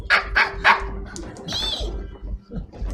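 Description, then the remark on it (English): A person mimics prairie dog squeaks: three quick, shrill yips in a row, then a longer rising-and-falling squeal, loud, with some speech mixed in around them. “But whatever noise they're making seems to make sense. It's like, ee!”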